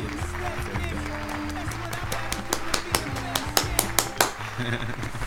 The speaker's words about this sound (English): Yo, can we get a hand clap for that, bro?